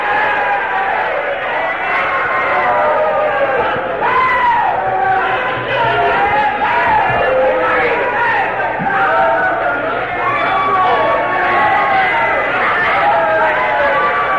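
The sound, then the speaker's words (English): A large crowd shouts and cries out together in a continuous, loud, overlapping roar of voices, with rising and falling exclamations layered throughout and no pause. “How long you think a devil can stand a crowd like this?”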